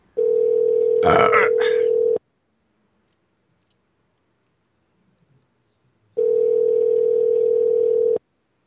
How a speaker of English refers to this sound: For the love of Christ, answer the phone!